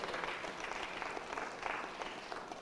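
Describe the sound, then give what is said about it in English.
An audience breaks into sustained applause, many hands clapping together in a dense, steady wash of sound that fills the room without a break. “Somebody ought to clap a little bit in here.”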